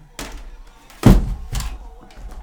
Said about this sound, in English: Excuse me, my laptop just fell off. I accidentally caught the wire with my foot.